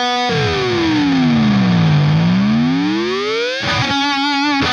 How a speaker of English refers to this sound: And I have my Paul Gilbert airplane flanger always set to take off.